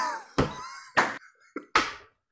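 A phone is dropped, giving a few sharp clattering knocks: three solid hits and a small tap, spaced unevenly as it bounces and settles, over a faint steady tonal hum.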